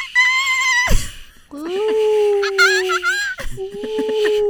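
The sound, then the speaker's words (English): A person imitates a seagull with high, drawn-out squealing cries: three sustained calls in quick succession, fairly loud, broken by short breathy gaps. “I'll do the seagull or bird.”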